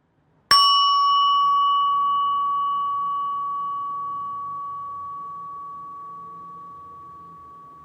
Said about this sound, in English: If you're wearing earphones, don't worry, this won't be super loud, but it's going to be a bell. So just brace yourself in case you're driving your car or something. Okay, ready?